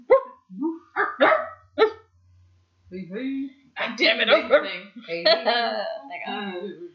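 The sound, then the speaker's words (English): A person imitates a dog, giving a few short, sharp barks, then a louder, rougher run of rapid barking and yelping. “Anytime I drink, either a dark rum or a whiskey or something, every shot I do, I just want to bark after them.”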